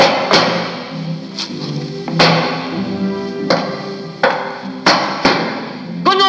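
A man stomps around, heavy stomping footsteps landing in an uneven rhythm, about eight loud, sharp thuds with a low ringing hum between them, and no voices.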